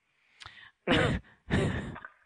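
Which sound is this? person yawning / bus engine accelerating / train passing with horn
person yawning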